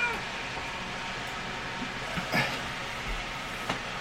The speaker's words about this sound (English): All right. One cat out in the hallway. Podcast has won this round. At least right now. Yeah. Now she's down the hallway making noise, so maybe we haven't won.